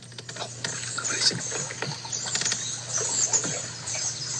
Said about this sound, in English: a cypress swamp, captured a video of an alleged ivory bill taking flight, flapping off through the forest.